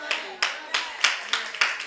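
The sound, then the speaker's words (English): A crowd claps in a steady, even rhythm, about six or seven sharp claps in under two seconds, moderately loud, with a faint murmur beneath. “Now listen, don't clap.”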